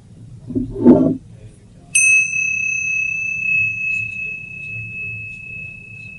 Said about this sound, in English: So just stay once again and connect it to the body, and then when you hear the sound of the bell again, begin.